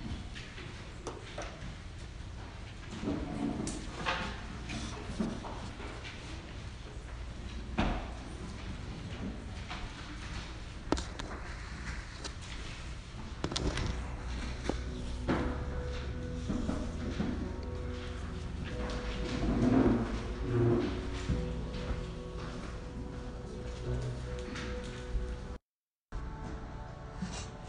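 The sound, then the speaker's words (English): Pages of Bibles rustle and pens scratch across paper as people copy scriptures into journals, a steady, soft bed of activity, with scattered faint clicks and taps and no one speaking. “Lord, what a beautiful sound it is to hear the rustling of pages of your word, and a beautiful sight to just see eyes gazing down and pens moving and knowing that our hearts are taking in the words that you have given us, God,”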